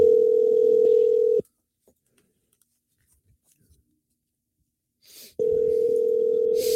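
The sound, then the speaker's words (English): A phone ringback tone on an outgoing call: a steady, loud electronic tone sounds, stops for several seconds of near silence, then begins again, with no one speaking. “I mean, I can hear the phone ringing.”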